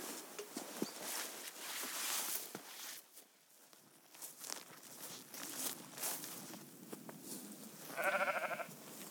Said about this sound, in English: Well, there's somebody talking. That sheep, that herdwick, taking advantage of the shelter of that silver birch.